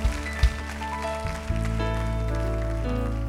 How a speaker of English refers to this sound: Oh, give him another hand clap.